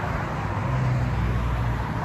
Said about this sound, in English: A lot of traffic today. A lot of traffic. It's going to clear up right about now.